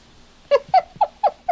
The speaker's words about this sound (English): Sorry, I had a cat trying to climb up the back of my shirt.